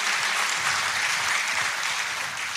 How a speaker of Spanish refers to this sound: Dele esas palmas al Señor.